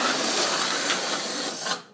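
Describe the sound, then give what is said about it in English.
A breathy, raspy fart-like noise blown through the lips on an exhale during a breathing exercise, held steady for almost two seconds before cutting off abruptly, with no talking. “Exhale, blow up the balloon. And let it fart.”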